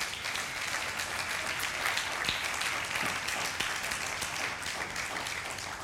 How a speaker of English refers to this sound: Clap your hands one more time for Jesus.